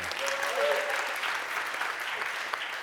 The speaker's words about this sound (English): Did you know this is my son-in-law? Give him a clap as well.